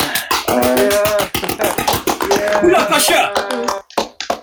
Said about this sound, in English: Shit, everybody's clapping outside. It's Thursday. Oh, yeah, it's 8 o'clock, right.